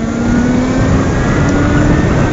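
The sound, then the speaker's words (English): A petrol motorbike engine roars past, loud and steady with a slowly rising pitch as it passes, over rushing wind noise and no speech. “That was an actual petrol motorbike going past me.”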